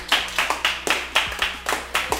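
A small live audience at a show recording claps in a loose, uneven rhythm, about eight or nine sharp, bright hand claps over two seconds, moderately loud, with no talking.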